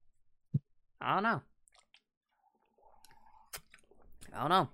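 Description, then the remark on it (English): Quiet drinking sounds: a short click, then two throaty gulping swallows separated by a soft sip and faint wet mouth noises, with no talking. “Also, I hope people cannot hear me drinking.”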